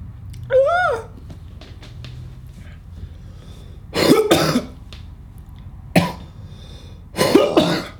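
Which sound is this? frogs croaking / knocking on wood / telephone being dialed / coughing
coughing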